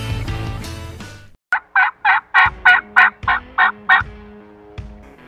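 A turkey gobble made with a game call: a loud, rapid burst of about nine rattling, throaty notes rolling out in quick succession, preceded by a short stretch of mixed noise and followed by quiet.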